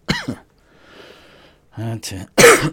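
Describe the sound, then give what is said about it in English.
A person coughs in a few short, harsh bursts, with a brief breathy pause in between and a louder, rougher cough at the end. “Fun with coughs today.”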